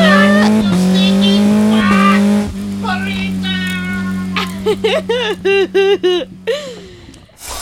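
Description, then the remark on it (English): A race car roars with a steady engine drone, then its tires let out a rapid run of loud squeals in short bursts before it speeds off. “The race car made out of pasta and ants just went.”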